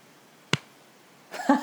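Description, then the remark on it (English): A single sharp, crisp hand clap rings out alone, the start of a slow clap, followed after a pause by a voice beginning to speak. “Oh my God, my first slow clap.”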